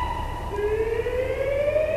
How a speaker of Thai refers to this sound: เสียงหวอไม่เข้าเยอะใช่ไหม เดี๋ยวลองทุกคนเงียบดูว่าเข้ายังไง